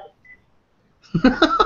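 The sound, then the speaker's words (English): A mobile phone beeps in a quick run of bright, pulsing electronic tones after a faint short blip and a near-silent stretch, rising loud and insistent at the end. “Your phone is rebelling against you.”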